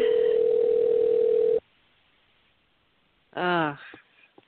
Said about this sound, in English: Anyway, phone will ring. He either will hear or he won't.